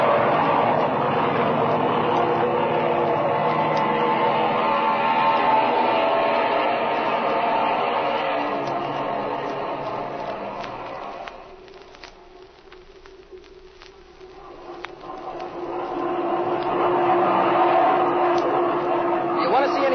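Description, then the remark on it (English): An already warm airplane engine, started for takeoff with the oil temperature at 110, drones steadily and loudly, fades to a low lull partway through, then swells back up as it revs again, with a rough, buzzing hum throughout. “Flash had the engine running a while ago, so it's still warm.”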